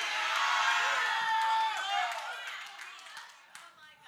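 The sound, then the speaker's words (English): A crowd of voices shouts and cheers in a loud, sustained roar, with scattered claps and vertical bursts of whoops, gradually tapering off toward the end. “Somebody shouting here.”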